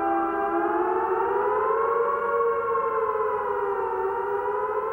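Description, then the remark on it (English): A loud British civil defence warning siren for a coming emergency, sounding in homes, wails steadily on its own, its harmonic-rich tone slowly rising and easing in pitch over several seconds without pause. “If the coming emergency is expected, the following warning siren will sound in your homes.”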